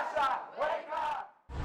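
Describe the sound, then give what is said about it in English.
A crowd of demonstrators in Sydney's streets chants in support of Ukraine in loud, rhythmic bursts of massed voices, three swelling shouts with brief dips between, then another surge beginning at the end. They hold placards and wave Ukrainian flags in wet, rainy weather. “Demonstrators held placards, waved Ukrainian flags, and chanted in support of Ukraine despite wet and rainy conditions.”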